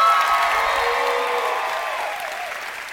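An audience applauds steadily, a dense crackle of clapping with a few voices cheering and whooping over it, the sound easing off slightly over about three seconds.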